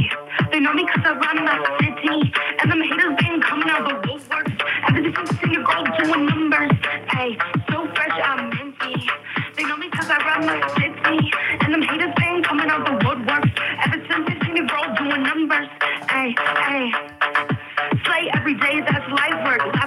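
A homemade rap song titled "Minty", created in 2020 during the COVID lockdown, plays back continuously. A voice raps rhythmically over a beat, with muffled, band-limited, lo-fi sound at a steady, fairly loud level from start to finish.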